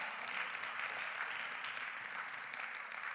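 An audience claps together in praise of Jesus during a morning church service, a dense, steady wash of many hands holding an even level for the whole few seconds with no voices over it.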